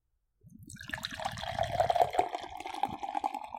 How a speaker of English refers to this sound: Oh, you're not pouring it in a glass? Should I? Yeah, let's see the color of this.